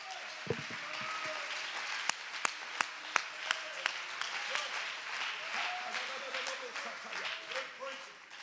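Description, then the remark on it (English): An audience in a church sanctuary on a Sunday morning applauds in a steady wash of clapping, with a run of sharp, evenly spaced louder claps standing out in the middle, and scattered voices calling out underneath. “Oh, clap your hands in the sanctuary if you thank God for mercy.”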